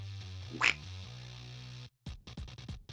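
A steady buzzing tone gives way to a rapid burst of six or seven loud duck quacks in quick succession, with no talking.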